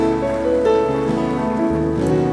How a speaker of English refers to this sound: Come on, give you God a mighty clap of praise.